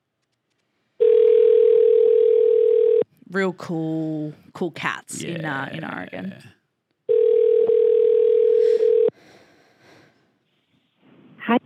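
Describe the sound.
Two long, steady ringback tones from an outgoing phone call to someone in Portland, Oregon, each lasting about two seconds and loud and buzzy in a mid pitch, separated by a stretch of people talking.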